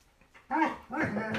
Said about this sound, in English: You know, the dog barking, you know, it's distracting me.